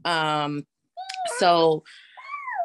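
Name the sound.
cat meowing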